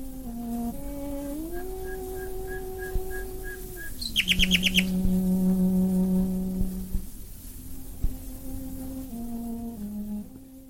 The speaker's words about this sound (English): And she was confirming just what I was saying, that you know, you can play any sound, the nightingales will join in. Let's listen to a little bit of Beatrice Harrison.